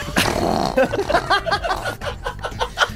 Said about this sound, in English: We've really started playing fart sound effects during the podcast.